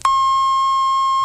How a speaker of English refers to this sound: And this is WJBK, AM and FM Detroit, Michigan, serving this area for 37 years. At the tone, the National Bureau of Standards time will be on the button exactly 6 o'clock.